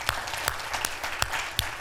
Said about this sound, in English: If you have been active military in the past, or you're active military right now, would you please stand so we can honor you by clapping hands right now? Come on. Come on, let's show our appreciation.